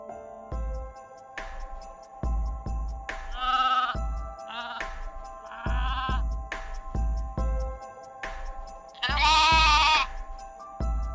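Sheep bleat repeatedly in a two-eyed sheep exhibit, several wavering calls, the loudest near the end, over a steady rhythmic low thumping and a faint tonal hum in the background.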